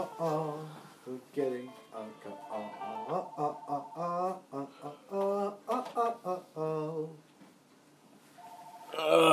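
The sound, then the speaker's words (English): A landline house phone rings with electronic, tone-like trills under steady conversation, then briefly sounds again more clearly as the talking pauses near the end. “God damn it, house phone.”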